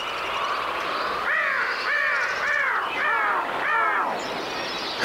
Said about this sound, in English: Live pitch shifters are actually very tricky to do. All right, let's go into pitch shift echo.